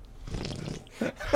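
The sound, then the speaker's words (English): A drawn-out, noisy slurping sip from a drink, followed by two short wet gulping or mouth sounds, with no talking. “Let me take a sip for our listener's pleasure.”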